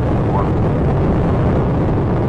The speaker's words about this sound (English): Atlantis on its way, all three engines now throttling down as the area begins, as the vehicle passes through the area of maximum dynamic pressure.